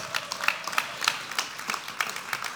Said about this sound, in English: I think you guys should clap for that. That's huge.